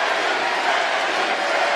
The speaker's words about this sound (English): The crowd's hot, they're loving it.